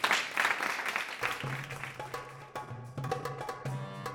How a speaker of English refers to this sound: And yes, a round of applause for Jean Lamont. Thank you.